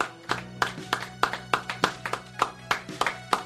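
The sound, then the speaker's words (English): A small group clapping in a steady, slightly uneven rhythm, each sharp clap distinct, with a faint low hum running underneath. “You guys stop clapping?”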